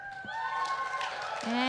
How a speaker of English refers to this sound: You get to decide, is it the JoJo Siwa or the Rachel? We need a round of applause. Should we do JoJo first? Yeah, sure. If JoJo you first. Vote JoJo Siwa, let's hear you cheer.